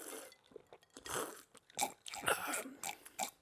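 Wet chewing and crunching with smacking bites and a gulp, in irregular bursts broken by brief pauses, done as ASMR with no talking.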